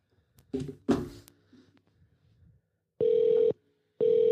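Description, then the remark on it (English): A few soft clicks and taps, like a phone being dialed, give way to a call to a county animal protective services office ringing on the line: two loud, steady buzzing ring tones about a second apart. “Oh my god, it's ringing.”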